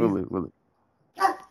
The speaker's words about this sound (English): There we have dogs.